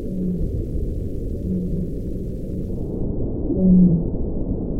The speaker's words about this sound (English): We recorded several different baleen whale calls.